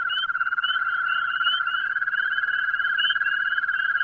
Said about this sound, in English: They're what's known as your common garden toad. You'd never expect something with so many warts could sing like this. And listen to the way they all get together into these toad choruses, all twirling away.